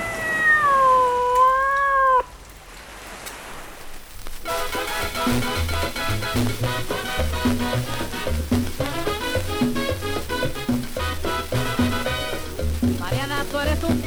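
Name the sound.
cat meowing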